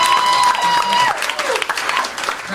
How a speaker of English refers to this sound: Crowd goes crazy.